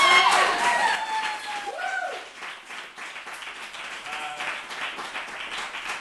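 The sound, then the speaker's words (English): Audience applause with dense clapping that starts loud, dips briefly, then continues steadily, with a few whoops and cheers mixed in early on, after a play by Sydney during an evening of staged plays. “So we accept the following applause on her behalf.”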